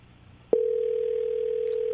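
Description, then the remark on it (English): After a half-second of low background hiss, a telephone dial tone switches on and holds as a steady, unbroken hum, fairly loud, with no talking over it, as a phone call is dialed directly. “we'll just dial in these calls directly”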